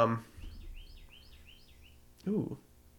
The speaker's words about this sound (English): People definitely heard that. He's here for it. People love the bird chirps.